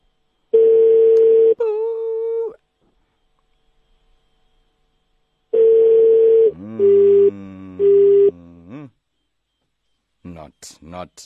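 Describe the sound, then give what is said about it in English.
Telephone line tones during an international call come in two loud bursts separated by a pause, each a steady buzzy tone followed by short warbling beeps, with brief garbled voice-like sounds at the end. “Answer the phone. Hey, international calls.”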